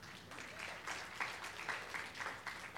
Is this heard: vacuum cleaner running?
no